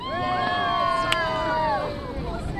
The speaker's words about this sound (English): Some 50 visitors from around the world lean over the rail of the whale-watching boat Porto Mia. They scan the clear blue waters of the Caribbean Sea, searching for humpback whales.